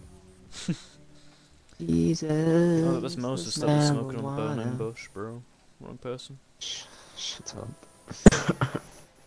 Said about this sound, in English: That was me coughing, bro.